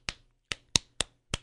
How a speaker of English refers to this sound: I'm slapping myself. Yeah, I'm not dreaming.